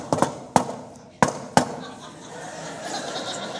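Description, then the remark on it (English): Knocking on a house door at dinner time: five sharp, loud raps in an uneven pattern, a quick pair, a single knock, then another pair, with a low murmur of background noise between them. “It got to the point where when he knocked like that, it was like knives.”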